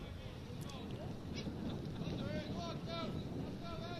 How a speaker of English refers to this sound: The wind blowing.